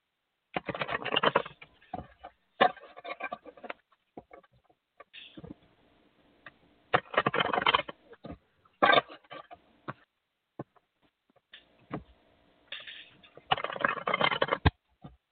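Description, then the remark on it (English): A deck of cards being shuffled, with bursts of dense, papery riffling separated by pauses and scattered soft taps and clicks. No voices are heard. “I'm going to shuffle the cards, just ask that question over and over, and do not answer it for yourself.”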